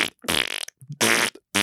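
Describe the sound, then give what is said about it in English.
A loud, wet fart sound effect from a device being pressed in a classroom plays in three long, buzzy, sputtering blasts separated by short gaps, with no talking over them. “me back my copybook, it let off the loudest, wettest fart imaginable that she actually jumped.”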